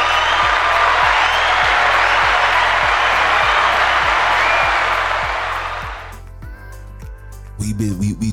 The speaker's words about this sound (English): Ooh, round of applause.